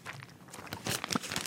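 Crinkly plastic handling, with rustling and a few sharp snaps as a small zipper bag filled with ice cream base is pressed shut, growing busier and louder toward the end.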